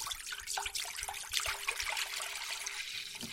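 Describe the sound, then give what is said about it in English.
A pint of malt vinegar pours steadily into a pan for cucumber and apple chutney, a continuous splashing trickle lasting a few seconds, with no one speaking. “Mum's about to pour a pint of malt vinegar into the pan.”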